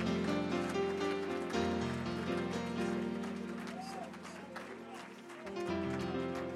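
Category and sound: crowd, audience clapping hands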